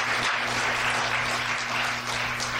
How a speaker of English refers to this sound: Yes, we could clap. Right?